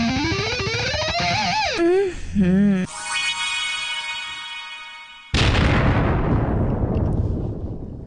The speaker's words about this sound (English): Nice explosion. Oh, man. I like it.